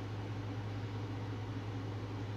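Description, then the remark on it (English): An air conditioner runs steadily, a constant mechanical hum with a low drone under a broad airy whoosh, unchanging throughout, with no voices. “Alright, could you turn the air conditioner off? I think it's cool enough in here.”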